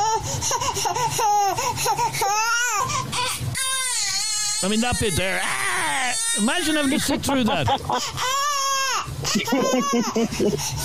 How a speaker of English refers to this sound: You see, my point is, I only played 30 seconds of that baby crying there a second ago, and it's already going through my head. Listen.